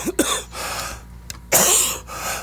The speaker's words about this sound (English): Yeah, I'm coughing up about a year's worth of smoking all this week because I quit on Saturday. Oh. I haven't had one cigarette since Saturday, and I'm coughing up my lungs.